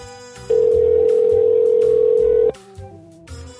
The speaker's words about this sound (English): Right, here we go. We are now ringing them. Fingers crossed. Fingers crossed. Right, it's ringing. Let's see if anybody answers.